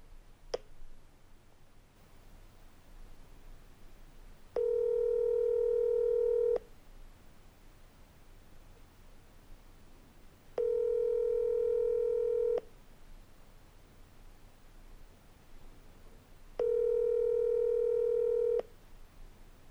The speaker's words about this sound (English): And now a phone call